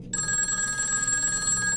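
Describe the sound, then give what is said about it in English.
A telephone rings again with a steady, bright electronic trill that starts abruptly and holds continuously, fairly loud, with no voices over it. “That's just a regular phone call. It starts to ring again.”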